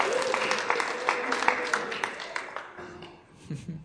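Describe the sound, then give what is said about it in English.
A crowd applauds steadily, a dense wash of many hands clapping that gradually thins out and fades, with a voice briefly audible near the end. “Give yourselves a lack of applause.”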